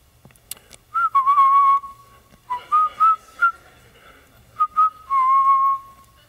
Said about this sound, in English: Yep, that's a good time for a phone call. Someone's cell phone's going off right now. I'll let you answer it.